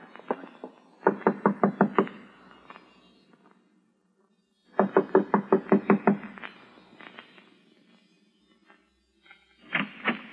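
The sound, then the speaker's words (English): Firm knocking on a door on Mars in two rapid bursts of about eight raps each, separated by a pause, followed by a brief third flurry; fairly loud with no voices. “I'm going to knock on the door now and keep smiling to show we're friendly and let me do all the talking.”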